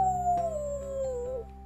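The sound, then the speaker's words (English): A single drawn-out howl at the moon that slides slowly downward in pitch, steady and fairly loud, fading out after about a second and a half with no talking. “They showed him how to howl at the moon until it hid behind a cloud.”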